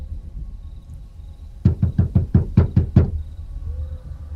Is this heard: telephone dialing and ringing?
no